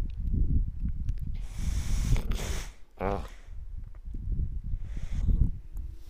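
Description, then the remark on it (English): Many snakes hiss in two long, breathy bursts over a steady low rumble, with a brief rising, buzzy creature call between them; no one speaks. “Lots of snakes.”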